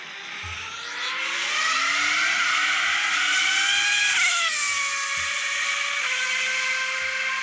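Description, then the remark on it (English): A voice imitates a Ferrari race car engine with a loud, sustained, buzzing drone that shifts pitch, dipping and revving as if changing gears, held continuously for several seconds with no talking. “Is that a Ferrari?”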